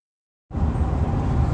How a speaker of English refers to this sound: in the truck again, driving back from another trip.